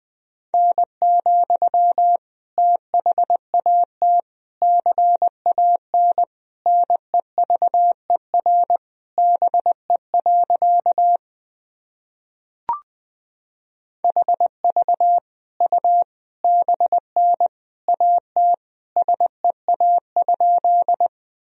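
A steady mid-pitched Morse code practice tone keys out sentences built from the top 300 words and abbreviations at 20 words per minute, in quick dots and dashes in brisk groups, broken by one short pause with a faint click before the sending resumes. No voices.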